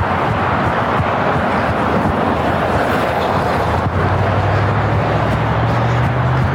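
Loud, steady rush of road traffic with wind buffeting the microphone; about halfway through a low engine hum swells as a vehicle draws nearer.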